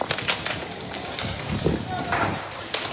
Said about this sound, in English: Bright orange flames pour from the first floor.